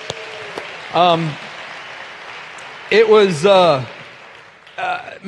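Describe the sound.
A crowd claps steadily in a dense, even patter that runs the whole time, while voices call out in a few short bursts over the top, applauding a pastor and the message he brought on a Sunday.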